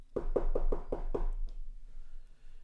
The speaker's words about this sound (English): As she went up the Finger Ridge in the Jezreel Valley to Joseph's home, she knocked on the door.